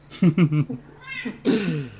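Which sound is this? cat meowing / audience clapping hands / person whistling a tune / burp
cat meowing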